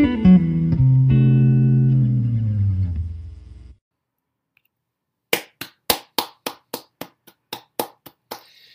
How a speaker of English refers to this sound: Clapping because it's the new year, and also if you know anything about tech or doing videos or podcasts, clapping at the beginning of a clip is how you can sync up your audio and video.